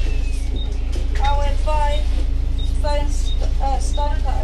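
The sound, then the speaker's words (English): Steady low engine rumble fills the inside of a moving bus on a journey into Yarmouth, with people talking over it in the cabin throughout. “Welcome to a bit of a bus journey into Yarmouth.”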